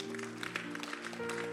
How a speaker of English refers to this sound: How many are happy they came to church this morning? Yeah, you've done something. Come to church. Clap for yourself.